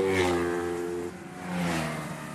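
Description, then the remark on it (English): Go-kart engines rev loudly and continuously, a buzzing whine rising and falling in pitch as toy-sized racing karts about 6 feet long by 4.5 feet wide speed past at over 60 miles an hour in the finals of the 2012 Irish Go-Karting Championship, with no voices. “Go-karts. They're toy-sized racing cars, about 6 feet long by 4.5 feet wide”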